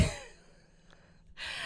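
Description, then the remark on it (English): Heavy breaths rush into a microphone, a loud exhale at the start, a quiet pause, then another strong breath, with no talking. “Okay, you're breathing hard too.”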